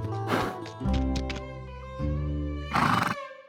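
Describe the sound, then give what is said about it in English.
A horse neighs loudly, a long harmonic whinny with breathy snorting bursts at the start and a rough, shuddering blow near the end, with no other sounds around it; from a horse sound library made for the animated show Spirit Riding Free. “We got a whole new horse library because in that show, there's three characters who are horses, so there are no actors voicing them”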